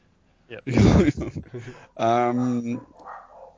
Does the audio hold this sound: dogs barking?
yes